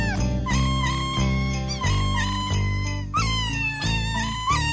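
Sampled, pitched cat meows strung together into the melody of Jingle Bells, a Christmas song, each meow landing on a note in quick rhythmic succession over a steady backing track, loud and up front with no one talking.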